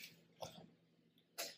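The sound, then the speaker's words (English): Two short, harsh coughs about a second apart, the second one sharper, sounding fairly quiet with no talking around them, caused by inhaling smoke with resin floating in it. “It's just the resin that's floating around it that's making us cough like that.”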